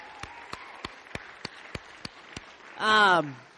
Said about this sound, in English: Let's give these moms a round of applause.